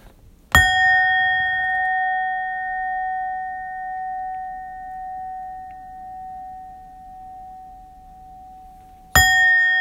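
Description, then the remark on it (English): A bell is struck twice, about nine seconds apart; the first strike rings out with a long, clear, sustained tone that slowly fades before the second strike cuts in sharply. No one speaks. “Let me go ahead and ring this bell again, because here my ass fucking go.”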